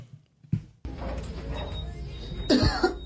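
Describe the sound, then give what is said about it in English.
A brief blurt of a fart covered by a sharp cough, with a louder cough-like burst near the end over a steady background hiss. No one speaks. “You gonna act like that was a cough?”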